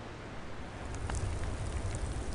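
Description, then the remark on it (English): Steady, dense cold rain pours down in an unbroken hiss with a low rumble beneath it on a stormy night at sea, with waves crashing, growing slightly louder partway through, with no voices present. “It was an eerie, dark, stormy night in a far-off sea. 100-foot waves crashed and cold rain poured.”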